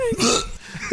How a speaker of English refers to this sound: Oh, that's when I had the hiccups.